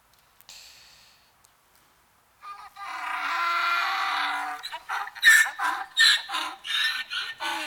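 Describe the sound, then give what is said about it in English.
A man's voice imitates a donkey's bray: a long sustained nasal wail followed by a series of rhythmic, choppy hee-haw bursts, loud, with no other sounds around it. “Sounds of a donkey.”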